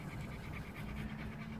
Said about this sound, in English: In the background, you hear the breathing of the two dogs who've just been running in the grass at the park before dinner.